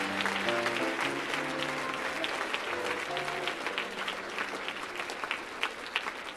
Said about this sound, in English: Come on, won't you clap your hands and thank the Lord. He's forgiven you.